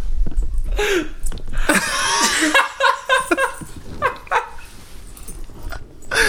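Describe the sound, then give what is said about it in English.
A dog lets out a string of loud barks and yowls in quick bursts over several seconds, with what sounds like some laughter mixed in. “You need to chill out, dog. What are you doing? That was crazy. That was loud.”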